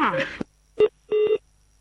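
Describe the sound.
A voice speaks briefly, then two electronic telephone keypad tones sound: a short beep followed by a longer one, clear, with silence between them.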